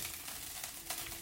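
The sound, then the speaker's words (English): A steady crackling sizzle of sausages frying in a frying pan, dense and continuous with faint pops, fairly quiet with no talking. “What you might be able to hear in the background is not cheering and the celebration, but the frying pan frying.”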